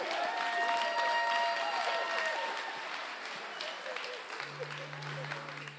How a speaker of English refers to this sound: That was an awkward clap thing. It was like really strange. No, you don't have to clap.